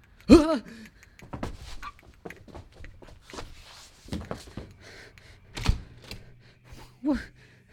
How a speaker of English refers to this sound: But I heard him. I can still hear him even now, that annoying clicking. But it's... It's coming from above.